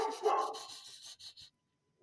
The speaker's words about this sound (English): That is Rachel Eileen, and she likes to bark at everything.